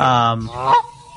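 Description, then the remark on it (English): A loud honking bird call, like a goose: two drawn-out nasal honks in quick succession, then a brief fading tail, with no talking. “Wait, no, yeah, wrong bird.”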